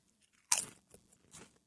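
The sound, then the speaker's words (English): A sharp, bright crunch as a potato chip is bitten, followed by two softer crackly chewing crunches. No one speaks. “This is a potato chip.”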